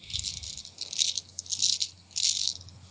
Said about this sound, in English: Okay, so I roll 14 dice.